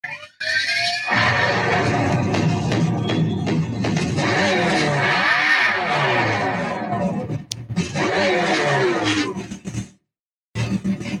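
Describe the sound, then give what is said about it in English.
A loud, synthetic-sounding simulated engine of an electric muscle car, emulating the low rumble of an old muscle car, revs for about ten seconds, its roaring pitch swooping up and down in sweeps before it cuts off abruptly. “Could you hear its revs? Yeah, I can hear its revs.”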